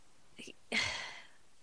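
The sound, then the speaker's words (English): A short vocal catch followed by one loud, rough exhale that trails off over about half a second, a man breathing heavily and catching his breath after yelling. “He's at a loss for breath from how much he's yelling. Like, look at how heavy he's breathing now.”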